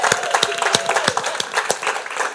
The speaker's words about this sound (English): I want us to give a big round of applause for us entering into 2023. Give God some praise for that.